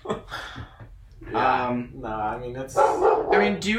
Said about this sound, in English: That's my dog, folks. Yeah, say hi to Sydney. She might be making more appearances as we go on. But she's a sweetie.